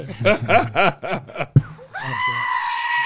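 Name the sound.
goat bleating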